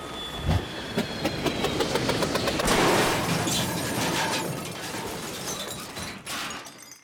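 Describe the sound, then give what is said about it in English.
A rumbling crash landing with a long, dense clatter of metal as bicycles are knocked over, rapid rattling impacts over a steady roar that fades out abruptly at the end. “I'm just gonna pick up all these bicycles I knocked over real quick”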